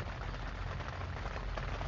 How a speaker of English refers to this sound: You know, as you can hear, the rain got coming outside like crazy. A lot of thunderstorms. Like I said, yes, that is rain in the background, if y'all can hear it.